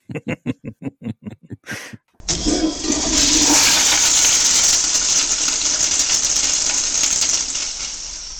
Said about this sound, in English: They're really working on cleaning that scene up where he gets flushed down the toilet.